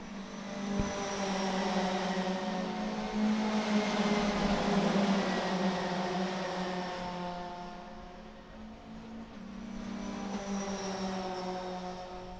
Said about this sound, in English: Here we go. Let's have some race car noises before we get on with what happened in free practice.